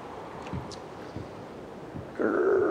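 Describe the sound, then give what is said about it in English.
A man makes exaggerated dad noises: a few short grunts at a steady pace, then a louder, drawn-out strained groan that runs to the end. There is no speech, only faint background noise. “After we make some dad noises?”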